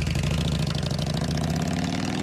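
A Harley-Davidson motorcycle engine idles with a deep, lumpy rumble, steady, its low pulsing throb filling the whole stretch with no voices.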